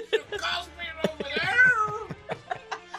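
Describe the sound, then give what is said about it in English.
A cat meows repeatedly, with one long, drawn-out wavering meow in the middle surrounded by shorter, choppier cries. “Sorry, my cat was being annoying.”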